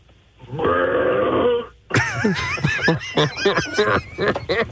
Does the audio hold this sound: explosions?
no